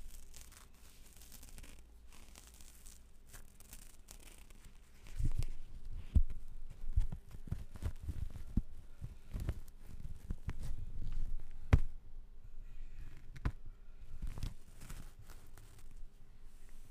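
A face mask being handled, with soft crinkling and rustling. It starts quiet, then grows into irregular bursts of crackly fabric noise with a few sharper rubs and snaps, and no voices.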